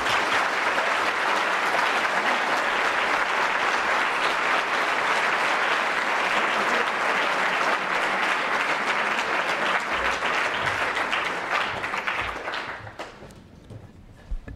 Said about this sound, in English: Would you please now, with your warm applause, welcome the President of the European Commission, Jean-Claude Juncker.